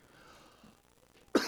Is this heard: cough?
yes